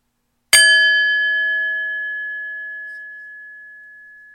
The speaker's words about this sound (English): Let's start now for 30 seconds. I will ring the bell when we are 15 seconds in.